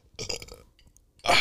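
A raspy burp rumbles out for about half a second, then after a brief pause a second, louder and harsher burp bursts in and is cut off at the end.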